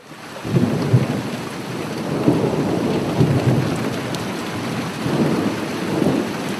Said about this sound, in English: As we are walking back up the long timber jetty after the dive, the rain begins to fall, and by the time we arrive at the lodge, a strong westerly wind has, all of a sudden, blown up.